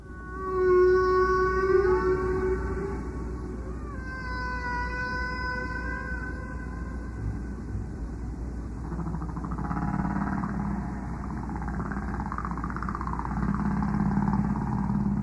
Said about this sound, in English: He still remembers the day that this engineer hands him a pair of headphones, threads this tape onto a tape machine, and calls out, "I think it's a humpback whale."